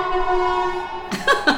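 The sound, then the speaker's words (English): A siren sounds outside: a steady, bright, multi-toned blare holds for about a second, then breaks into shorter rough bursts as it passes. “And those sirens are not coming for us, but you would think.”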